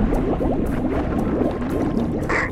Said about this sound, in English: Opening outer sea door.